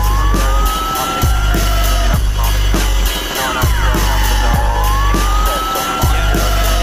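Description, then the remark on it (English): Police sirens wail in long rising and falling sweeps, loud, layered over a steady thumping beat with heavy bass. “Look at the sirens coming.”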